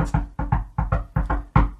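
A rapid rhythmic knocking, about nine sharp raps bunched into quick groups with a syncopated, triplet-like feel, fairly loud with nothing else in the background.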